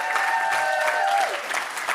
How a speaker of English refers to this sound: And we love our pastors. Amen. Come on, let's clap for our pastors one more time.